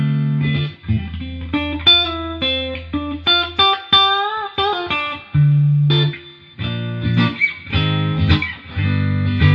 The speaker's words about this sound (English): Sound like a 60 Strat. It has that kind of like really just just clean 60s tones, and then you can really get that, and it really gives you everything you're wanting out of it.